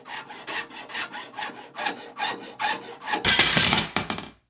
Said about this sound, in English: So he would have these 20-minute increments of time where he could saw, and then wait. Saw, and then wait.